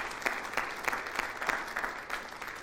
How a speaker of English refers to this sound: Let's give the Lord a clap offering this morning.